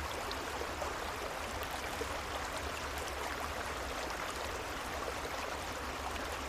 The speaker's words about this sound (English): And if you'd like, You can imagine you're laying beside a beautiful, gently flowing creek. And this sound of the creek will go on after the guided portion is over to help you fall deeply asleep.